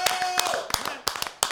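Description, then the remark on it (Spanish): A short burst of audience applause for Canal América: scattered, uneven hand claps at a moderate level, with a faint steady tone in the first half and murmuring voices underneath. “Un aplauso a Canal América, hermano.”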